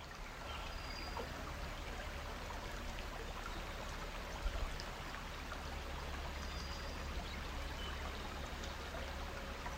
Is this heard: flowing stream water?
yes